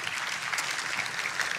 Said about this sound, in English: And then finally, we can applaud that, that's cool.